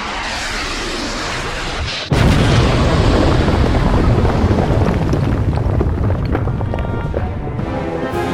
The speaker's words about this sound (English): Worlds Collide. Insert explosion noise here.